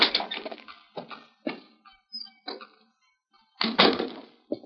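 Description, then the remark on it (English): An unlocked side door of a house creaks and clunks open in a series of short knocking, rattling bursts with pauses between, ending in a louder thud, with no voices. “Well, the door is not locked. We'll go on in.”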